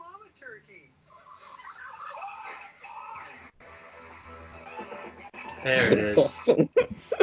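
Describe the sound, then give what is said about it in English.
A large bird calls with rapid, warbling gobble-like bursts, growing louder and more frantic toward the end, mixed with indistinct voices and other noise. “There it is. That's a giant bird.”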